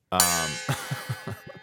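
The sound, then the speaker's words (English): A gong is struck once, ringing out loud with a bright, shimmering sustain that slowly fades over about a second while someone begins talking over the tail. “the gong is a welcome sound. They gave me the gong this week, folks.”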